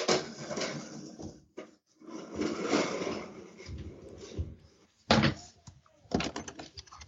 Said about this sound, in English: He's like, what are the ways I can make the most noise right now? Oh, now he's knocking on the door. He's like, hello. He's like, Dad, what are you doing? I see your feet in there.